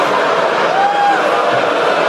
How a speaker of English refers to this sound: They're just booing that she has a resume.